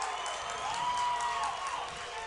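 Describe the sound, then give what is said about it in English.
A stadium crowd boos as a football game ends, with Fort Payne beating the Scottsboro Wildcats 41-34 as time ran out. It is a steady wash of crowd noise with a drawn-out, wavering vocal tone that rises and sinks, continuous and fairly loud throughout. “And the crowd's over there booing.”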